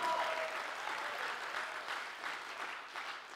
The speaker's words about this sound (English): Come on, how many want to go to another level of trust? Come on, clap like you believe it right now. Come on, everyone.